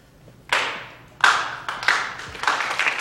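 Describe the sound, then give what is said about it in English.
An ovation from the entire student body: loud, sharp claps ring out in a slow, uneven series, each one trailing off, before thickening into denser applause toward the end. No one speaks. “He ends up getting an ovation and a round of applause from the entire student body.”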